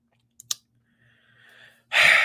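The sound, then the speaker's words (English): A short click and a brief tonal rasp, then a loud, harsh, breathy burst of throat clearing that cuts off abruptly. No talking. “Let me clear my throat.”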